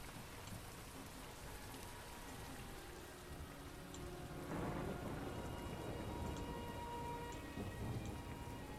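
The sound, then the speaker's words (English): Steady light drizzle patters continuously in a wood under a canopy of trees, with a soft low rumble swelling up around the middle and lingering to the end. No voices are present. “The canopy protecting you from the light drizzle and fills your nose with wet earth, spongiforms, and dewdrops.”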